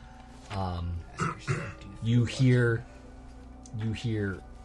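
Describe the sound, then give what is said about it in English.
A person imitates a wolf's growl with a series of rough, throaty vocal bursts, fairly loud, pausing briefly between each snarl with no actual words. “you hear this gnarly growl, and you've heard this growl before. The wolf.”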